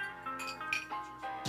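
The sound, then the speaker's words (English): Whiskey glasses clink together in a toast, a few light ringing taps in quick succession, fairly quiet, with no talking during the clinks. “Let's cheers up and let's try it out.”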